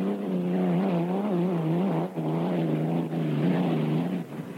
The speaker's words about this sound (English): I like the sound of that engine and the power, and the boat has just got a hold of you and it just kicks you all over, and it's nice to just grab on, brace yourself, and ride her out.